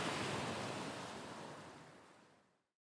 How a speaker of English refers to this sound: You're listening to Ocean Waves in Hawaii.